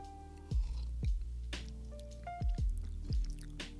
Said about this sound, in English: That is a beautiful cup of coffee. I love it. I'm going to have a sip of coffee right now.